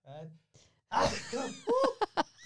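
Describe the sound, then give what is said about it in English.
A single loud sneeze, from a cold caught out on the ice, erupts as a sharp explosive burst after a brief vocal inhale, followed by short voiced sounds and murmured speech. “Bless you. That's cold from being on the ice.”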